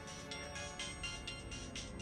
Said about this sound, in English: He pulls out his phone and he dials your number. My phone starts ringing?